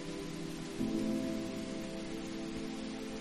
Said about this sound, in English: You stand on the porch, watching the rainstorm come through. The sound of rain is so enchanting.